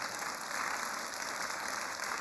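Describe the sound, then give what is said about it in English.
A crowd claps steadily in thanks and praise to God, a dense wash of many hands applauding together at an even level throughout, with no voices standing out. “Can we give a clap of thanks and praise to God for what God is doing?”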